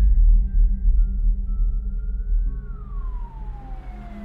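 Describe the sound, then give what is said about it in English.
A police cruiser's siren wails over a steady low traffic rumble, its tone holding then sliding downward as the vehicle draws near, arriving in front of a house. “A few minutes after Jessica called 911, a police cruiser arrived in front of the house.”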